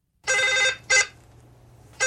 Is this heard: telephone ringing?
yes